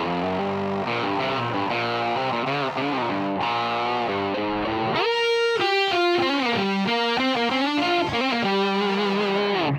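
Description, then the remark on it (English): In a rhythm track, a distorted guitar and a synth play the same melodic riff doubled in unison, the guitar leading at first before a brighter, buzzier keyboard tone takes over partway through; loud and sustained, no voices. “And once again, there's a guitar and synth part doubled up.”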